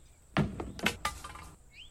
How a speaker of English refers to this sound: You throw the other stick at the car barrier.